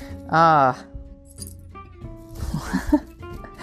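Small metal craft pieces held in a hand clink and rattle together in a short, light flurry, following a brief vocal sound at the start.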